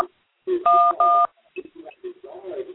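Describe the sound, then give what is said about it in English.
Two quick, loud telephone keypad tones beep one after the other, each a steady dual-pitched tone. Voices talk faintly beneath them and keep talking afterward. “Is that your phone? No, that's not my phone.”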